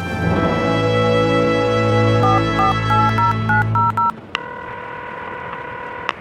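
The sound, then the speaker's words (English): A quick run of cell phone keypad beeps, about eight short tones at a steady pace as a call is dialed near the Abiquiu Dam, followed by a continuous ringing tone, all clear over a low hum. “Call your mom on the cell phone and let her know what's going on.”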